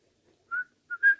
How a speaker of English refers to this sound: I notice you whistle that tune when things are going well.